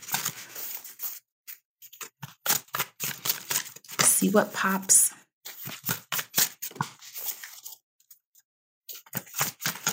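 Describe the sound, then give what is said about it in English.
A deck of affirmation cards is shuffled in quick, crisp bursts of papery riffling and snapping, fairly loud, with a brief spoken remark partway through, before a card is drawn. “Do a little shuffle.”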